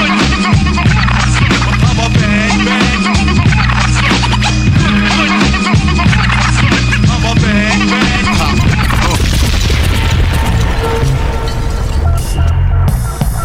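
A DJ from Brooklyn, East New York, scratches a turntable, cutting rapidly back and forth over a loud, thumping hip-hop beat, the record chopped into quick stuttering bursts throughout, with the rhythm shifting into a denser stretch near the end.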